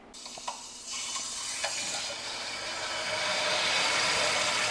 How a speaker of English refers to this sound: Christine opens a valve to let in a flow of water. The water powers the motor that swings the churn. The water to run the churn was once directed downhill from nearby Mount Tom through an elaborate series of pipes.